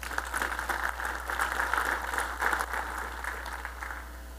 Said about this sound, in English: If you're a voting member, I'd like you right now to clap your hands.